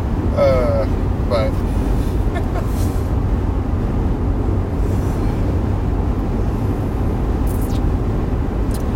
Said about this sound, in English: I also have no idea how this audio is going to sound with all the wind around the car. I might turn out fine, might turn not.